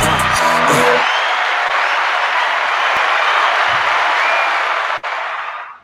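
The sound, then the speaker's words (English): A dense wash of crowd applause and cheering, loud and steady for several seconds, with a brief burst of voices at the start before it fades near the end, as an audience welcomes a guest. “Ladies and gents, can we get a round of applause for him, please?”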